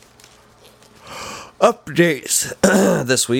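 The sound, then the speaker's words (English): A man yawns as he talks: a breathy, drawn-out intake of air followed by a few stretched, sagging words, fairly loud. “he said as he yawned.”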